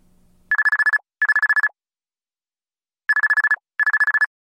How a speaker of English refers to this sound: The sound of a cell phone ring plucked Gia from the nightmare she had just endured.